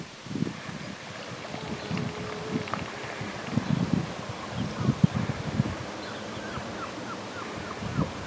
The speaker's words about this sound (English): I was told by my friends who spent some time here that they heard singing seals. Seals that sort of sing, and that's what that is.